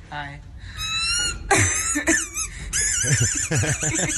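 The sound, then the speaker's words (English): High, whistling squeaks from a swallowed squeaky dog toy, heard at a hospital, sound in quick bursts between harsh coughs. Some voice-like sounds join in near the end, fairly loud. “So he swallowed a squeaky dog toy, and the hospital staff couldn't stop laughing at him, but they were able to eventually get it out.”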